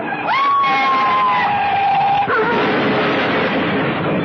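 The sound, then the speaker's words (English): A loud car crash with a wailing police siren: a high, steady siren tone rises and holds over heavy rumbling noise, then shifts as a clattering burst of impact and debris takes over. “Ed Javison died in that crash.”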